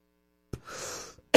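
A sharp cough followed by a raspy, drawn-out throat clearing, then another abrupt cough, with no talking in between.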